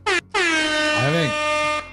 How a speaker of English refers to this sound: The air horn of the warrens. The air horn of hell.